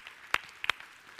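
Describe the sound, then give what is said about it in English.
A few scattered handclaps from an audience, about three sharp claps spread over a second, fairly quiet, with no voices over them. “You can applaud that.”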